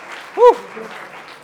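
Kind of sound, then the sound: crowd, audience applauding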